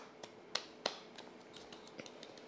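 A soft, polite golf clap, kept quiet as at golf: a handful of light, sharp claps in an uneven rhythm, two slightly louder near the start and the rest fainter and scattered, with no voices.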